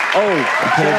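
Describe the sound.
A dense wash of clapping and applause fills the brief moment, steady and fairly loud, with a voice talking over it.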